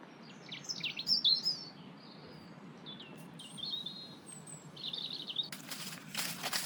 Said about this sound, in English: Talking to the farmer, apparently the wildlife now is so much more diverse. So they're seeing a whole range of birds, including goldfinches, wrens, red caps, long-tailed tits.